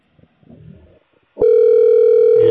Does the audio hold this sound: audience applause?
no